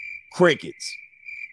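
Steady, high-pitched cricket chirping runs through the whole moment at a moderate level, briefly overlapped by a short voiced sound near the start before the insect trill continues alone.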